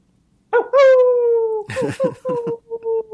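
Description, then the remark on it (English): A person imitates a wolf's howl: one long, drawn-out vocal tone that slowly falls, then a string of shorter, choppy yips and wavering calls. “Are you a wolf, …?”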